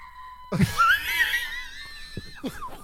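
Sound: dog screaming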